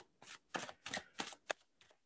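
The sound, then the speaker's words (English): A deck of 78 tarot cards being shuffled, a series of six crisp papery riffles in an uneven rhythm, each a brief rustling burst with short pauses between. No voices. “So the first thing I do after I would have taken my cards out of my cartouche is I shuffle them.”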